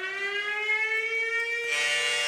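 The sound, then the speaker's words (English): A loud, sustained siren tone with a rich stack of harmonics, holding a steady high pitch before shifting abruptly into a harsher, brighter wail near the end, like a fire truck siren. “That's like a fire truck.”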